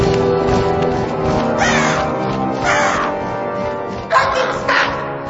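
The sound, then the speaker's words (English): A voice mimics a raven's angry cawing, making three or four harsh, raspy croaks in quick succession, loud, with a sharper, strained squawk near the end. “I mean, if she has to be there, let's just make her an angry raven.”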